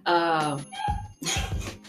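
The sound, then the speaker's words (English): Loud barking-like yelps in a few bursts, a drawn-out cry followed by shorter rough barks, made by children at a sleepover imitating dogs barking. “God, the kids are barking.”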